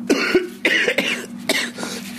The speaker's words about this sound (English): And this cough is a shithead.